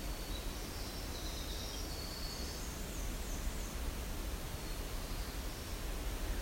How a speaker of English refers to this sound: So you can kind of compare black-throated green, black-throated blue here, and how they sound like they have the same voice. That buzz section.